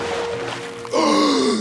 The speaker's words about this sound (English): Hadding exploded from the water, sucking in air in huge, desperate gasps. He was alive.